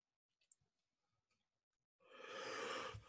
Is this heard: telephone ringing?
no